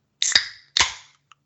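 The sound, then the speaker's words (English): A can of sparkling wine is cracked open: two sharp, loud snaps, each trailing into a brief fizzing hiss, followed by a faint tiny click. No one speaks. “So we do canned bubbles down in the Natty.”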